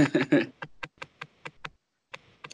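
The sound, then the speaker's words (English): A short, muffled burp into a face mask is followed by a quick run of light, evenly spaced taps or clicks, then two more after a brief pause. “Did you just burp into your mask?”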